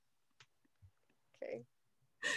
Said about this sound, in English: Go ahead and roll a d20.